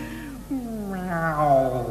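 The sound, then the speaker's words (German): A person imitates a cat's meow, a long, drawn-out, wavering cry that swells and falls in pitch, sung fairly loud with no other sounds around it. “Schenk mir doch ein kleines bisschen Liebe, Liebe, sei doch nicht so schlecht zu mir. Miau.”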